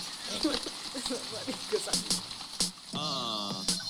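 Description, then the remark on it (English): Water splashes and trickles in an irregular wash with a few sharper splashes, partly masked by voices and a higher sustained vocal tone near the end. “I hear water.”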